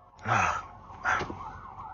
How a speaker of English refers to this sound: Hopefully everything is all right with this ambulance. I hope it's just a false alarm.